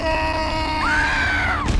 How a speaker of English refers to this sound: Then the screaming started.